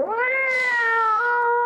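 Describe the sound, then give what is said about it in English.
A single long, drawn-out meow from an older cat, loud, with a strained, slightly rough tone that wavers and dips near the end. No talking. “Older cats.”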